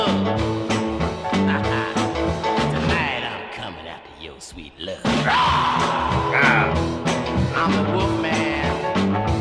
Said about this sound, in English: I love the yelling in that track.